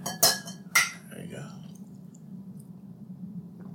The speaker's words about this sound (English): And let's kick it off with a nice little cheers here. There we go.